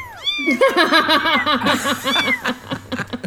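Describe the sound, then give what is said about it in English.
Many high, thin kitten meows overlap in quick succession, a busy chorus of tiny mewing calls, continuing steadily for a few seconds with no talking. “I'm giving birth to kittens!”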